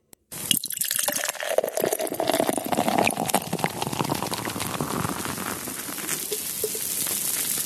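A steady stream of Bud Light Seltzer, poured out as a tribute, splashes onto the floor for several seconds, a continuous hissing, spattering wash with no voices.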